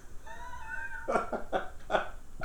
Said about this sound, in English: So we'll let him cough it out for a second. Are you all right?